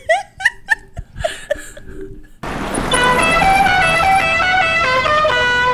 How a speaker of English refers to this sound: This is a really good scene because we see Paulie's incredibly bad driving. Yes. And I believe that his car horn sounds like it's the Godfather. Yes.